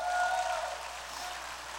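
A crowd claps hands in praise of God, many hands clapping together in a dense, steady wash that starts a little louder and then holds evenly for about two seconds, with no talking.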